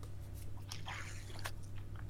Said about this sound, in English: Just have a sip of pop.